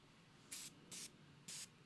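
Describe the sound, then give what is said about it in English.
Three short, hissing bursts of a pure citrus aerosol air freshener being sprayed, fairly loud, with brief pauses between each spritz and no talking. “So I'm gonna spray some pure citrus.”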